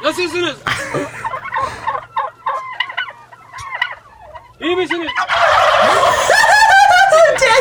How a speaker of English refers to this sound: Why do these Muslims have all these turkeys?